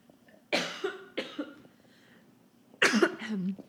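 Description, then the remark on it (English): A person coughs in two bursts, first a couple of raspy coughs, then after a short pause another harsh cough with a throaty tail. No talking, fairly loud. “Ooh, I'm going to cough again.”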